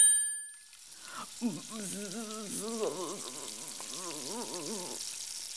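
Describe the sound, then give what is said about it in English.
A short chime rings, then several voices imitate a sausage sizzling on a barbecue, a steady hiss mixed with wavering, warbling vocal tones that continue for several seconds. “Let's all pretend to be a sausage sizzling on a barbecue, adventurer.”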